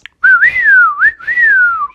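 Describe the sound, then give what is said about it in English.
A person whistles a wavering, sliding tune for about two seconds, rising and falling in pitch with a brief dip in the middle, loud with no talking. “They tried whistling for the dragon.”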